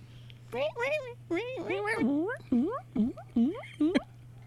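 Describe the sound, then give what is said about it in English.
Guinea pigs squeak in a loud run of about seven sharp, rising squeals, some stretched and wavering, others short and clipped, with no talking and a faint steady hum underneath. “I didn't give them any today. Guinea pigs.”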